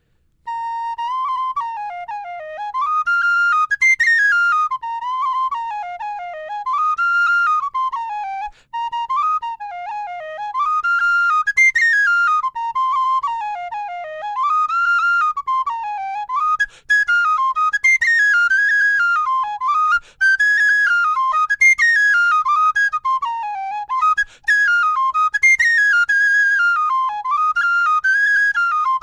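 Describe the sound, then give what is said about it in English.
A lively Irish jig played solo on an Irish tin whistle, a small six-holed pipe, bright, with quick ornamented runs in a bouncing triplet rhythm and barely a pause for breath throughout. “So the Irish tin whistle is, I have heard, it is the oldest of the instruments, going back to Neolithic period of time.”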